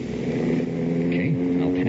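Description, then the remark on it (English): A four-barrel car engine drones loudly and steadily, its pitch lifting slightly partway through as it revs and picks up speed, continuous for the whole stretch. “A four-barrel car will leave you a nothing flat, buddy. How's that for speed, eh?”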